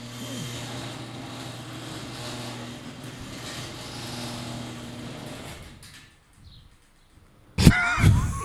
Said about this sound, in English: Hey, Seb's door just randomly opened.